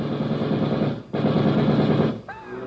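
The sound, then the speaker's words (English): Two loud, harsh bursts of rapid gunfire from a man with a gun who gets out of a car parked across the street, each lasting about a second with a brief pause between, followed by a voice crying out as the shooting stops and a man is shot. “He's got a gun. Frank, look out!”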